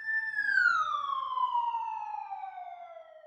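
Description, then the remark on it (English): An ambulance siren wails loudly and steadily as an ambulance arrives at a hospital, its tone sliding slowly downward over a few seconds, with only a faint low rumble beneath and no voices. “Not long after, we were seated adjacent to the nurse triage station and catching up with our stories, when suddenly an ambulance arrived.”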